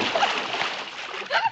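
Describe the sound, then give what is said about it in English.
A heavy splash as a man is tossed into water, followed by churning, sloshing water and a second surge of splashing near the end, fairly loud. “just tosses him in the water instead.”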